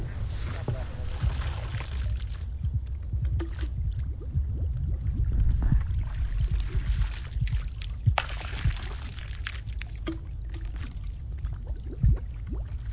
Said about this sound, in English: Noon takes a sample by first plunging a bottle attached to a pole into the middle of the creek where there is more water flow